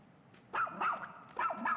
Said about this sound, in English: Woof woof. Hey, what is it, Otachi? He's trying to tell us something.